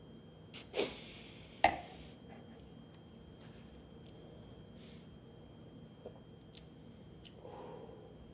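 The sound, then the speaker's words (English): A few quick, wet slurping sounds of someone sipping Pasote tequila, followed by a long stretch of near-silence with only faint, scattered mouth noises and no talking. “Let me take another sip.”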